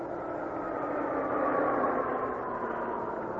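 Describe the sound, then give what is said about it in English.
A truck engine drones steadily with a broad, even rumble, continuous for a few seconds as the truck comes to a stop with its motor left running, with no voices over it. “Truck soon stop.”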